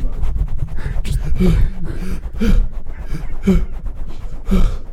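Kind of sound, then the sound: vocal imitation, imitated heavy breathing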